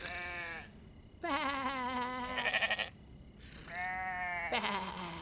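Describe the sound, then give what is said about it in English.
Sheep and lambs bleat, about three long wavering calls in quick succession with short pauses between, fairly loud and with no one talking. “Was she snuggling with the sheep?”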